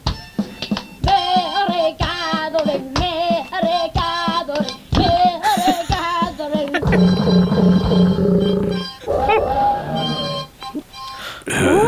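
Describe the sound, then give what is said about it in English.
At the end of a folk-style song recorded by a child of about 8 or 9, wavering, sung-like tones give way to a loud, buzzy growl imitating a lion's roar, followed by a higher trumpeting call mimicking an elephant, all fairly loud. “Quite dramatic at the end there, where a lion and an elephant suddenly came into the picture and no doubt ruined the merry gathering.”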